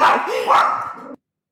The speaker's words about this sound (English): Sorry, Pudsey going off for crazy there, barking.